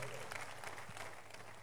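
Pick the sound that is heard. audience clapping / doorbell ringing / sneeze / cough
audience clapping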